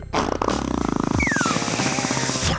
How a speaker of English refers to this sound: That was a real fart.